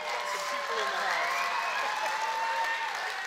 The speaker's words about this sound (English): Some of those were sympathy claps, buddy. I'm just wanting to let you know.